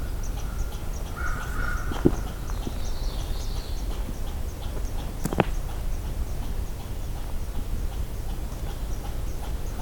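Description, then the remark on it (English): An angry red squirrel's scolding call by a cold shoreline, a rapid, dry chatter of high ticks repeating over steady outdoor background noise, with a couple of sharp louder calls cutting through. “So that's a red squirrel doing a kind of scolding call.”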